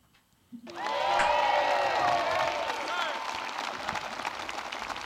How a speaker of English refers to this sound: I'm sorry, but it's them clapping.